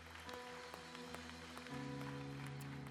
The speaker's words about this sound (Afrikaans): Kan ons hom 'n hande klap gee? Net vir hom sê Here, dankie vir dit.